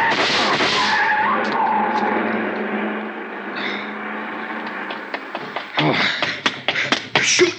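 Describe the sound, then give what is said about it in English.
A long black coupe with a lot of chrome and its lights off speeds away, tires screeching in a long, loud skid, the engine roaring, followed by sharp clattering knocks and thumps near the end. “The car. See the car. The one that just gunned out.”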